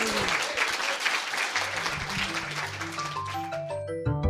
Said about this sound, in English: So let's give these guys another round of applause.